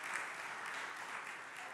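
An audience applauds in a steady, dense wash of many hands clapping at once, holding an even, moderately loud level throughout with no voices breaking through.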